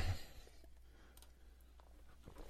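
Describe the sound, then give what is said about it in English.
A few sharp, loud, brief clicks from a computer mouse land at irregular moments over a quiet background with a steady low hum. “I just noticing that by clicking my this mouse is loud as hell, man.”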